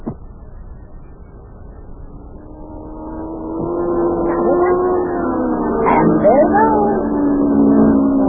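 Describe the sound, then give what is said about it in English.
A racing car driven by Yuki comes around the bend and heads toward the listeners through town, its engine whining and roaring, growing steadily louder over several seconds, its pitch climbing and wavering as it accelerates. “Boy, Mayor, that Yuki is really driving that car.”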